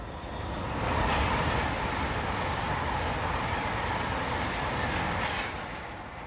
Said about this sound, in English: I'm outside the railway station waiting for Sharon's train.